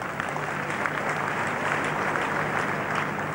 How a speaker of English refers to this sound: Let's clap for her.